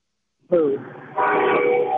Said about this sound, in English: He sounds like he's in a train station. Well, he's near a train. I'm sorry. There's a train right next to me.